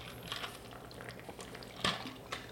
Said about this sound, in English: Excuse me, I have to get some water.